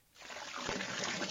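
toilet flushing sound effect

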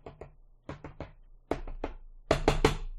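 four knocks

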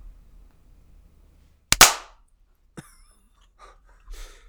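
hand clap

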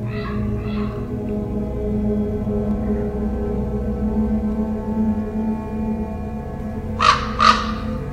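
raven calls

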